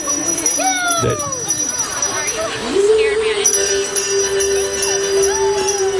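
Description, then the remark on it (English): Loud, blaring Christmas pop music with a female singer holding long notes, blasted out on the street while people insistently ring a hand bell. “they blast Mariah Carey's, All I Want for Christmas while they're like ringing that bell”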